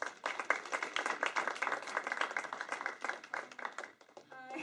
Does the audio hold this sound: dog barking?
no